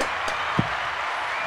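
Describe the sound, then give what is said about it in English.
A second round of applause: a dense, steady wash of clapping runs throughout at an even level, with a couple of brief sharper thumps breaking through. No one speaks. “Let's get a second round of applause.”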